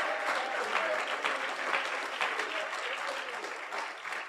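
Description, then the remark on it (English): An audience claps hands together in sustained, dense applause, a steady wash of many overlapping claps at moderate loudness that carries evenly through the whole stretch without pause. “Why don't you go ahead and clap your hands one more time?”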